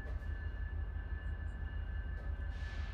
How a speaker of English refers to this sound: I'm getting off the train now. Here I go.